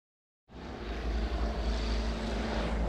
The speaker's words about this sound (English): In late July 2019, a plane roared over the vast wilderness of northern Canada. But this was no ordinary aircraft. It was an Air Force Hercules transport plane